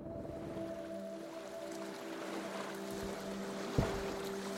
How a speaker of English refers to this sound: this is the dock where we got on the whale watching boat.